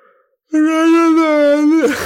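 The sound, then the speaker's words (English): A loud, drawn-out yawn made while trying to talk, voiced as a steady, moan-like tone for over a second, then trailing off into a breathy exhale. “That's me yawning, trying to talk.”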